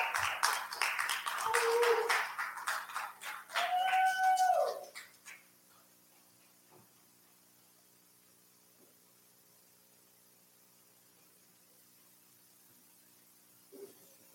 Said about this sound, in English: And yes, a round of applause, please.